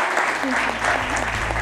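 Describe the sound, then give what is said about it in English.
An audience breaks into a steady round of applause for the evening's panel, dense overlapping clapping that stays loud and even throughout, with faint voices mixed in beneath it. “I'd like to ask you all to give a big round of applause for our panel this evening,”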